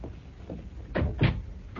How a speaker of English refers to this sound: please come in and close the door.